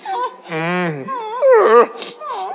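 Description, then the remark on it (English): A fairly loud voice imitates the whimpering of a feverish child at around 2 a.m.: a few short, whiny, wavering cries in quick succession, rising and falling in pitch, with a breathy catch between them. “Then around 2 a.m. you hear a whimper.”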